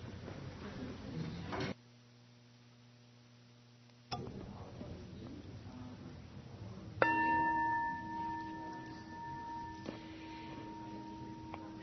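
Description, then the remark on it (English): A single bell strike rings out to signal the first speaker in a group discussion to begin, with a clear, sustained metallic tone that slowly fades over a few seconds, heard over a low murmur of background voices and room noise. “I'll ring the bell, and that can start the first speaker.”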